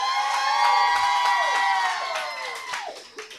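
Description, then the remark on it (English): An audience at a comedy show cheers and whoops loudly to vote a comedian into the second round, high shouts and squeals layered over a steady roar that holds strong for a few seconds before gradually tapering off. “So if y'all want to see Ian Ferguson in the second round, make some noise.”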